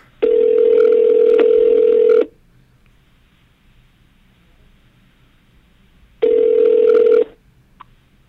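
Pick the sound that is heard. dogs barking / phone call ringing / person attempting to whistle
phone call ringing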